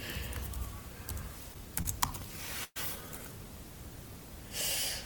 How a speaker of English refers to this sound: I distinctively heard pressing of keys. No, I was unlocking my computer, my laptop.